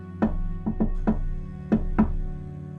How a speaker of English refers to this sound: He walks up to one of the doors on the first floor and raps on the door with a unique knock. He waits for a moment, but there's no answer. Concerned, he knocks again.